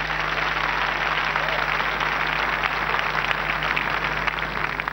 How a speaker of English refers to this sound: Amen. Let's clap for Jesus.